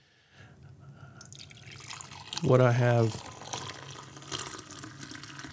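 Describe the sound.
Decaffeinated coffee poured steadily into a cup, a soft continuous splashing trickle, with a man briefly speaking over it midway.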